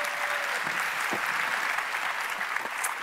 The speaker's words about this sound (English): But can I also say, can we give these guys one more round of applause for what they did today? Thank you, guys.